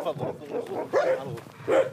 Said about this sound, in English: Dogs bark in greeting on the farm